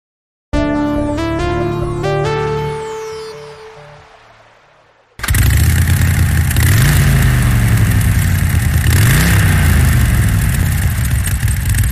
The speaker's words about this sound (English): Sorry I'm yelling so loud, but this motorcycle, I don't know what they put in these engines. It's so loud.